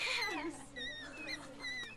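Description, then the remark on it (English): Monkeys at an animal rehabilitation center half an hour from Athens chatter in a string of high, squeaky whistling calls, several overlapping wavering cries repeating over two seconds, moderately loud with no talking. “Monkeys are just one of the animals that reside at the Union Ridge Wildlife Center, an animal rehabilitation center half an hour away from Athens.”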